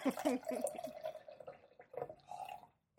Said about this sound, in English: Oh, no, that's me pouring tea. I was waiting. I was like, can I make a pouring noise yet?